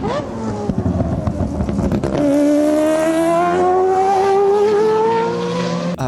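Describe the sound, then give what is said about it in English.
A Mazda 787 Group C race car's rotary engine screams at high revs, its pitch climbing steadily in a long, loud, continuous wail after a brief rumbling start, with a harsh buzzing rotary tone. “it's interesting because all the other Group C cars that are running around, well, you either have like Mazda 787s, which are just like... insane.”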